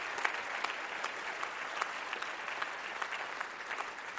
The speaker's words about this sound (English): Come on, Woodville, can we get on our feet and give one loud clap offering of praise? One loud clap offering of praise to God Almighty.